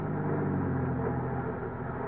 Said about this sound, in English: I switched on my ignition, started my car.